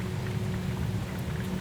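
Heavy rain from Hurricane Zeta pours down in a steady, unbroken hiss with a deep low rumble underneath, holding an even loudness throughout with no voices.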